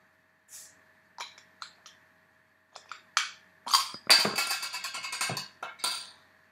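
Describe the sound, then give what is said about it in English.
A few sharp clicks of a bottle cap being worked loose, then a bottle of Tuatara Pale Ale cracking open with a crisp release and a burst of fizzing, crackling hiss, fairly quiet, with no one speaking. “It's a bit high, but anyhow, so we're going to crack it open and give it a try.”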